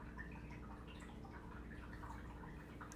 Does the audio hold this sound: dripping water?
yes